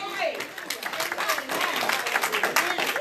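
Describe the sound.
An audience claps hands in praise, a dense, sustained burst of many hands applauding together, with voices shouting and cheering over the clapping.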